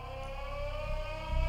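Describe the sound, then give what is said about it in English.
A World War II air raid siren sounding an attack alarm holds a steady, droning wail with layered harmonic tones, backed by a low rumble that swells slightly near the end. No one speaks. “The siren would sound. The alarm would sound. We are under attack.”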